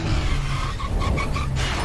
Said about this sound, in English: It's like a Formula One car. Or like a drag racing car.